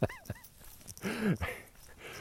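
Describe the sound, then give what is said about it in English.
A dog being taken for a walk gives two quick high yips with a whimpering tone, then a longer whining bark, fairly loud, with no one talking. “Oh, hopefully you're just laughing with joy because this is life, walking the dog.”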